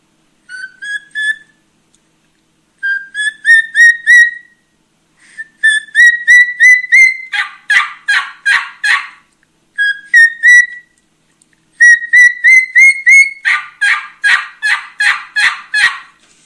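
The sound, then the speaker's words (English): A wild turkey kee-kee run: clear, rising whistled kee-kee notes repeated in short bursts, each series breaking into raspy yelps. Two full sequences, loud, with no talking. “This is the kiki run.”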